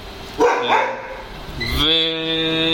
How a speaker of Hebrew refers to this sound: וניק נובח, לא נוכל להרגיע אותו טיפה.